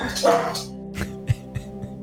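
A dog barks once, fairly loud, followed by a few shorter, softer yips spaced out over the next second or so, with a steady low hum underneath.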